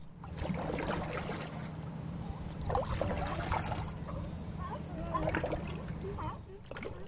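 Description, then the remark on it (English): Kayak paddles dip and splash in the calm water of Morro Bay, a resort town, with soft sloshing throughout, a steady low hum underneath and faint, indistinct voices. “And I'm here kayaking in Morro Bay, a sleepy resort town, to clear my head and relax a little bit.”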